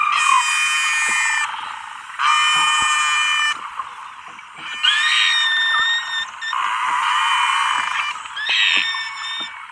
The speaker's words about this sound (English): Dr. Ridgway doesn't argue that Nosy is saying real words, but these noises are very different from normal beluga songs.